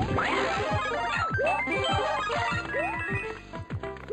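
Bright 8-bit Super Mario Bros. Nintendo video game music from 1985 plays loudly and continuously, with bouncy square-wave melody, rising blip-like sound effects and a steady pulsing bass beat, no voices.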